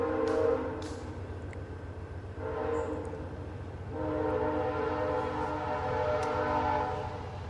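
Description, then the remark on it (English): A distant train rumbles past and sounds its horn in several long, sustained blasts, the steady harmonic tone swelling and fading over a low continuous rail rumble. “Ooh, we get another train. I won't adjust the settings for this. You'll just hear it in the distance.”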